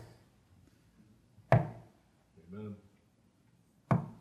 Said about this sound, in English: That's something knocking up against the ark.